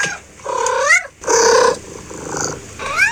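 A cat purring up close, mixed with a few rising, chirpy trills and a rougher rumbling stretch in the middle, fairly loud with no talking.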